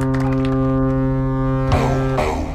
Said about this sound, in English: Full house. They brought the foghorn.